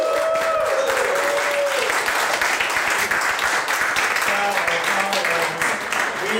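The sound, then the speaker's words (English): A live audience applauds, dense steady clapping filling the whole stretch at full volume, with a few whoops and shouted cheers rising above the clatter. “Clap it up and welcome to the live Tower Fire podcast.”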